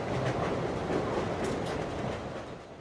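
Steady rumble of a train heard from inside a carriage, wheels rolling over the tracks with faint rhythmic clacking, loud and continuous before easing off slightly at the end.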